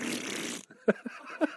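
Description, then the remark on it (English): A breathy, sputtering fart noise, probably made with the mouth, lasts just over half a second, followed by a few short, low vocal grunts and huffs. “Corpse fart.”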